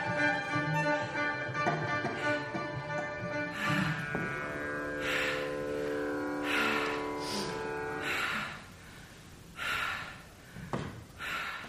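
A performer's slow, deliberate breathing from the stage show Breath: several loud, airy inhales and exhales at unhurried intervals, heard first over sustained harmonic tones that fade out, leaving the breaths nearly alone near the end.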